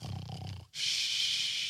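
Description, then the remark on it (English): A person mimics a snore with their voice, imitating the apostle Peter asleep in prison: a low, rumbling snorting inhale, a brief pause, then a long airy whistling exhale. Fairly loud, with no other talking. “Peter, snoring. Knocked out.”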